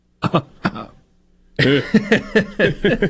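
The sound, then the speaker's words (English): Two short, sharp coughs, a brief pause, then a person starts talking steadily. “I hear a cough.”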